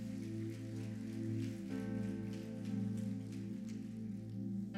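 A church audience claps in praise to God during a morning service, a dense, steady patter of many hands that keeps going throughout, over sustained low organ chords that hold underneath.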